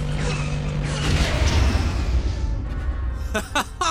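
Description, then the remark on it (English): Sci-fi laser cannons fire amid a dense, rumbling roar, with sweeping descending tones early on and a quick cluster of sharp, crackling blasts near the end. “Laser cannons charged. Firing.”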